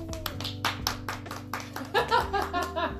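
Hands clap in a quick, steady rhythm, about a dozen sharp claps close by and fairly loud, with a low sustained hum and some voices underneath.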